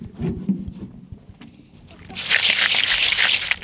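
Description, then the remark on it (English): A basket of young shellfish from the Kaipara is hauled out of the water and shaken, a loud bright rattling and sloshing rush after a few softer watery knocks and thumps. “Good shaky sound. Good. So you've just pulled up a basket.”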